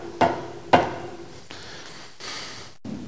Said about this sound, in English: Meanwhile, Jesus is knocking.